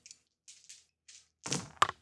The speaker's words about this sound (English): So let's do a quick test there. So let's have some dice rolls on the table here. On the table. Okay, and now if we hit the mat.